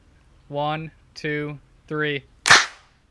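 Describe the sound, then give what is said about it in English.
A voice calls out three short, evenly spaced counts, followed immediately by a single loud, sharp hand clap with a crisp, bright snap, used to sync audio recorded over Zoom. “1, 2, 3, clap. I think okay. It's going to be clap, good.”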